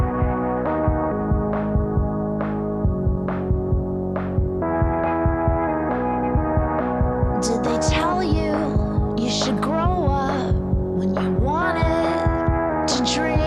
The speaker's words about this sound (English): As you can tell, it's pretty long reverb, I guess. Yeah, I think there's some sort of filter on those drums at the beginning as well, isn't there? It's quite pronounced.